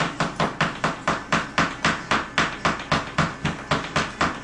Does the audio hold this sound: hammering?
yes